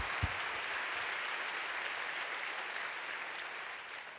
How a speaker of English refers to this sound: Come on, if you're getting this, give the Lord a big clap today.